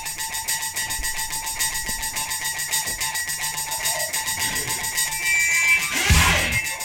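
A heavily distorted guitar hammers rapidly on a high harmonic note, a piercing, buzzing tone pulsing in a steady rhythm that rises and falls before swelling into a louder, noisier burst near the end.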